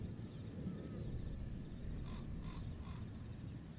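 Crows and ravens give three harsh caws in quick, even succession, rising over a steady low rumble like wind or rain. No one speaks.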